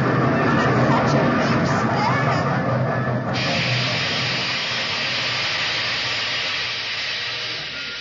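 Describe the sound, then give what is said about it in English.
A train pulls into a station with a loud, steady rumble and low drone. About three seconds in, a sharp hiss of steam breaks out and carries on, easing slightly by the end. “Did you hear what I was saying just before the train came in?”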